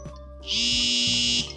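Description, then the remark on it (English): A phone buzzes with an incoming call in a single loud burst of about a second, a harsh, steady electric drone with a low hum underneath, and no one talks over it. “So what do you do when somebody calls you in the middle of a podcast?”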